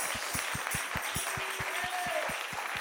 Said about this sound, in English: Hallelujah, clap your hands to the Lord.